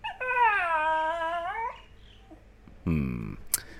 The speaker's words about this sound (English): Oh God, Toby's beginning to agitate for food, so apologies if you can hear some whimpering to my right here. He would choose just this very moment, wouldn't he?